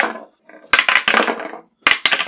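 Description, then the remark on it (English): Dice rolled at a D&D session tumble down a new dice tower in a loud clatter of rapid hard clicks and knocks, a longer rattling burst followed by a second short flurry, with no voices. “I want to use a new dice tower.”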